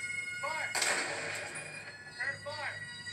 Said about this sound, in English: Here we go. Those gunshots.